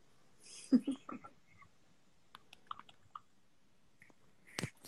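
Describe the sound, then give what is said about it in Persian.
A handful of short, crisp clicks spaced irregularly, like a computer mouse being clicked on an option that does not respond, fairly quiet, following a brief burst of indistinct vocal sounds at the start. “روش کلیک میکنی جواب نمیده؟”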